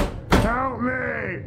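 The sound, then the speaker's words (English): A heavy thud against a door, a single sharp blow, followed immediately by a loud, strained voice shouting. “Open the door!”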